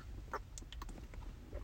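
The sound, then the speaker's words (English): A big gulp of water: a quick series of wet, clicky swallowing sounds over a low steady rumble, with no talking. “But, damn, that was a big-ass gulp.”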